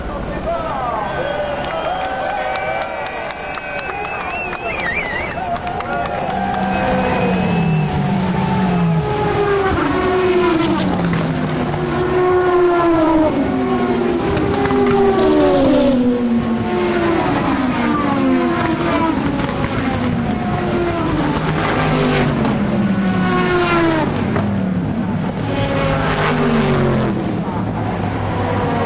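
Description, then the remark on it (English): A dense roar of 55 race cars revving and sweeping past at once onto the start-finish straight at the start of a race, their overlapping pitches rising and falling, with a crowd of about 250,000 people cheering underneath throughout. “You're about to hear 55 cars all at the same time. And about 250,000 people cheering.”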